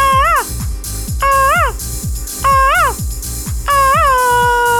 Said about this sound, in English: Where's my monkey call? Where's the monkey cry?